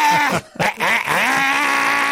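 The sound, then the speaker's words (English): A human voice imitates a dying bird: a strained, wavering, bleat-like cry that breaks off briefly, then returns as a long quavering, drooping squawk that stays loud throughout. “Coming up next, a bird dying.”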